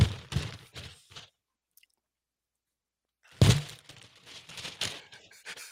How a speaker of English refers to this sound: More rustling, a little more rustling.